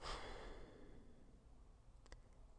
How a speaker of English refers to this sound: The breathing is extremely important in this training exercise, okay? The breathing is paramount. Take a breath.